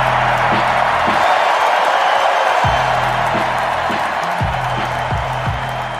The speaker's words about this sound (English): Sold out crowd. At introductions, coming out wearing old Bucks green, dabbing up his current teammates. Yeah. Crowd on their feet.